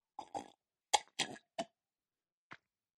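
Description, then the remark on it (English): A loud slurping sip of a drink, several short wet gulping bursts in quick succession followed by a pause and one faint final swallow, with no talking. “I was thinking, how loud can I make this sip so that it's audible and it plays in podcast form?”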